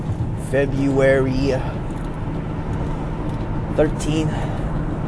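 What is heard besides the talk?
car interior noise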